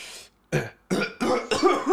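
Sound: imitated cough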